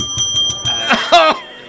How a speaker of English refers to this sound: Oh, I've got my bell ringing.